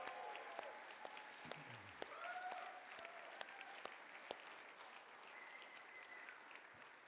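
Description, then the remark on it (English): A large audience applauds its pastors in a sustained, dense wash of clapping, with scattered cheers and whoops rising above it and a sharp whistle or two cutting through. “If you love your pastors, can you give a round of applause for your pastors?”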